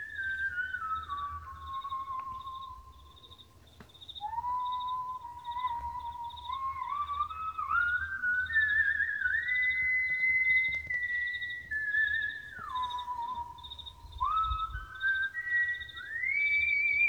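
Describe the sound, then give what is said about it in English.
A whistled melody of long, sustained notes that slide and step up and down, clear and fairly loud, over a low rumble and a faint, steady high-pitched beeping. “I wish my whistle game was like, I wish my range was that crazy.”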